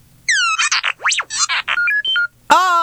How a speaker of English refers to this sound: R2-D2 appears on my phone! It's literally the cutest thing I've ever it's seen. It's adorable. And then he looks around while the phone is sort of warming up.